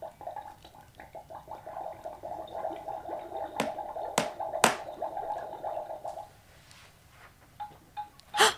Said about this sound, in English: I don't know if you can hear that, but it's a bubbling cauldron.